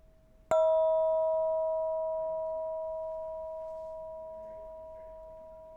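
A single meditation bell is struck once, ringing out with a clear, sustained tone that slowly fades over several seconds in an otherwise quiet space.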